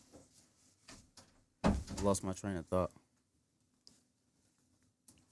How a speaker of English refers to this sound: Yeah, just close the door.